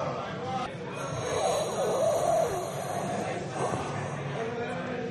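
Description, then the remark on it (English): A voice does an impression of Darth Vader's heavy, mechanical respirator breathing: a loud, continuous hissing rasp that swells in the middle and eases off, with no talking over it. “Our listeners think that you're hitting on a hookah or something, man.”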